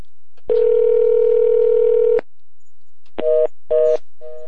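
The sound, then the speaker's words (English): A steady telephone dial tone holds for about two seconds, then stops and is followed by three short, separate touch-tone dialing beeps as a phone number is dialed to reach an IRS agent. The tones are clear, with no voices. “We'll call them on the air and we'll talk to an IRS agent.”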